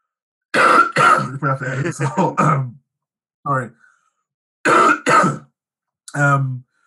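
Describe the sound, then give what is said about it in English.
A person coughs and clears their throat several times in loud bursts with short pauses between them, heard alone without any talking. “sorry, I got a cough.”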